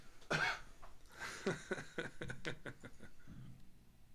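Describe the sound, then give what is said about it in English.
A sharp cough bursts out near the start, followed by a rapid string of shorter, rough coughs and throat-clearing sounds that trail off quietly. “Turn your head and cough.”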